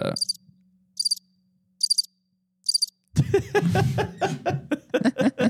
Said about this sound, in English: Go hit him with the crickets.